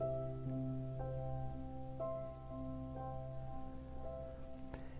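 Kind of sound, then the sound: nature, thunderstorm with rain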